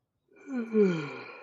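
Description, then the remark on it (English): A single long, drawn-out yawn from one person, rising in a breathy, voiced groan and then tapering off slowly, with no other sounds around it. “What's this the big yawn for?”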